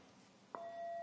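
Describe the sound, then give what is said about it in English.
A meditation bell is struck once midway through to start a two-minute mindfulness sitting, its clear tone ringing on steadily and sustaining to the end amid quiet, with no talking. “So I'll ring a bell to start and a bell after 2 minutes.”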